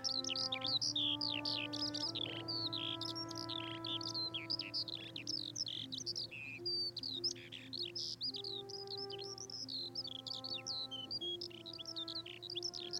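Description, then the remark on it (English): A skylark sings a continuous, rapid stream of high, twittering chirps and trills with no pauses, over a steady low droning hum that shifts pitch slightly now and then. “Skylarks are amazing when you think that they can ascend up to 100 metres.”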